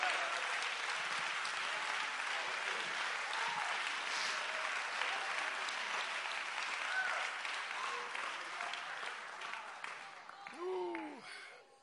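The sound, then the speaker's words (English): A large group claps hands together to praise God during a sermon, a dense, steady roar of applause for about ten seconds, then it thins out as a voice calls out briefly near the end. “Somebody ought to clap your hands and magnify him.”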